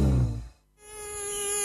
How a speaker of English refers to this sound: A mosquito plague is currently raging across the 1FM listening area. To make things worse, the mozzies can carry diseases like Ross River Fever, Barmer Forest Virus, and the potentially deadly Murray Valley and Japanese encephalitis.